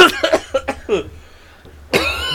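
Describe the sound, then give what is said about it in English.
A loud burst of several rapid coughs in quick succession from someone smoking a Cuban cigar, then a brief quiet pause before another sharp cough or throat sound at the end. “That's the perfect time to ask me that. Me coughing.”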